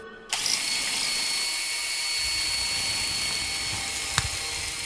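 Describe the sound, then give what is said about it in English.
A blood-splattered cordless drill whirs to life almost immediately and holds a steady, high-pitched mechanical whine for several seconds, loud, with a brief sharp click near the end. “A blood-splattered cordless drill comes in handy”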